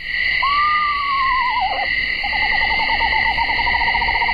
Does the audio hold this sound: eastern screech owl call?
yes